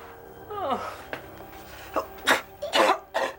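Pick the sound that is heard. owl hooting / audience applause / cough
cough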